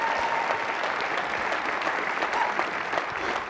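A crowd claps steadily for a few seconds, one more round of applause for a speaker, dense overlapping hand claps forming a continuous, fairly loud wash of applause with no talking.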